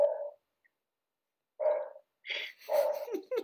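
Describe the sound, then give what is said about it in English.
A dog barks four times in uneven bursts, a single bark, a pause, then three quick barks close together, moderately loud with no talking. “Does anyone want a dog?”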